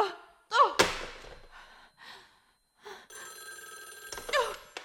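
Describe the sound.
A telephone bell rings in short bursts with steady high tones, mixed with a sharp thunk and brief voice sounds, moderately loud.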